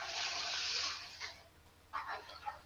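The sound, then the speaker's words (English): A toilet flushes with a fairly quiet, steady rush of water that fades out, then a few short gurgling splashes follow. No one speaks. “Hey, that was cool, a toilet flushing effect.”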